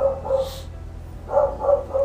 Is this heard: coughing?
no